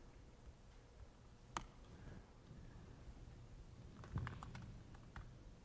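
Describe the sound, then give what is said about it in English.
Soft, scattered keystrokes on a computer keyboard as a presenter types a Git command during a live demonstration: a lone tap, then a quick flurry of clicks and a final tap, over a low, steady background hum with no one talking. “Typing too fast.”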